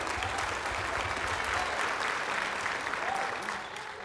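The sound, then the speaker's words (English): An audience claps its hands in a dense, steady wash of applause that holds strong for several seconds, then eases slightly near the end, with faint voices mixed in. “Can you clap your hands and say thank God that we are a part of his covenant?”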